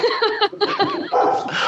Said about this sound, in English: Well, dogs barking, obviously.